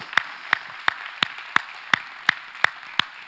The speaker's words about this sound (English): How many of you have received something from God today? Let's just give the Lord a hand clap of praise for what he's done in our own hearts.